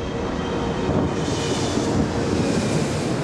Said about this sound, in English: The door to the jetway closes, and the plane begins to taxi without Peaches and Miss Bag aboard.